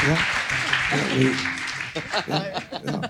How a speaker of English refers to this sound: And they put their hands up, and we all cheer. Now we say, how many of them got it wrong? They put their hands up, and we all cheer.